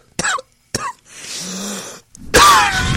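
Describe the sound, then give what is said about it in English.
Two sharp, wet coughs in quick succession, then a rasping, phlegmy inhale and a final loud, gurgling hack, harsh with no talking. “92 point phlegm, the disgusting cough.”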